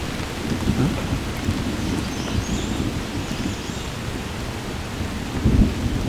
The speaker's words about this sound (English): A little bit of thunder.